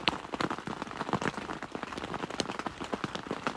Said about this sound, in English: Listening to the rain. It's wonderful.